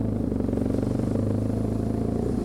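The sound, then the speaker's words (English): A motorbike engine runs steadily as the bike arrives at an apple-picking spot, a low, rumbling throb with a rapid pulsing rhythm, holding a constant loud drone with slight clatter and no voices. “And just the thrill of being on this bike.”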